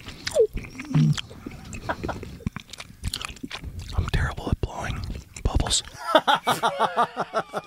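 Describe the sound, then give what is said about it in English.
Wet, sticky gum chewing right up against the microphone, with smacking and squishing mouth sounds in an uneven rhythm, joined near the end by a quick run of rhythmic clicking smacks and faint whispery breaths. “Who loves the sound of people chewing gum? Or somebody chewing their gum too loud.”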